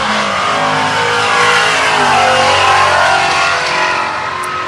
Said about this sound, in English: We just watched an altered wheelbase car drive by on Woodward.